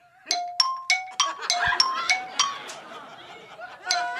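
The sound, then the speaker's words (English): A default phone ringtone: a quick, bright melody of plinking, xylophone-like notes struck in a steady rhythm, ringing out clearly over a faint murmur of background noise. “we're going to hear what you're rocking with in your real life when someone calls you on the phone”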